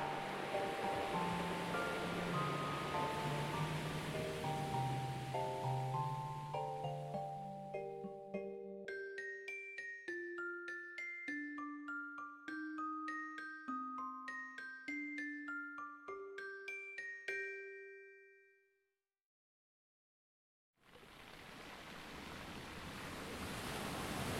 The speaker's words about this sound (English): I have often considered throwing myself into this ocean, letting the waves take me, rip me apart.